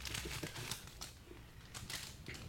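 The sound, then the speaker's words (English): Parchment paper wrapped around homemade granola bars crinkling and rustling in a run of sharp, irregular crackly bursts, fairly quiet but steady across the whole moment, with no talking. “In the parchment paper.”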